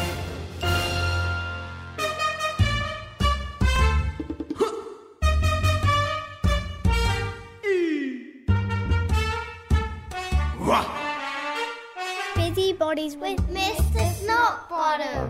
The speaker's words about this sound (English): Roll the theme song.